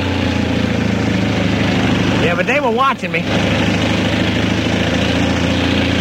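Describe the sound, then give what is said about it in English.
A lawn mower engine drones steadily throughout as workers cut the grass in a city park, a loud, constant motor hum that never lets up, while a man speaks briefly over it partway through. “the city park, and the guys who were cutting the grass kind of recognized me.”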